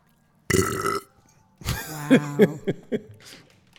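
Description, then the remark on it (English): Loud gulping, belch-like noises into a microphone: a short rough burst, then a longer low croaking sound broken into several throaty pulses. No one speaks. “I should probably seriously, really, we're gulping into the mic.”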